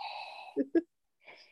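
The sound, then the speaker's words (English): A voice imitates heavy, rasping mouth breathing: a drawn-out breathy exhale followed by two short, louder huffs, a brief pause, then another softer breath. “Michael is just out and about, mouth breathing all over the kitchen”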